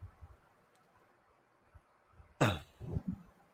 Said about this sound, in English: Pardon me, had to cough.